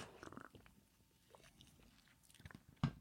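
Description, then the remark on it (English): Someone takes a quiet sip of a drink, with soft wet mouth noises and swallowing, ending in a sharper click. No one speaks. “Give me one second. I got a sip here. I'm getting dry quick.”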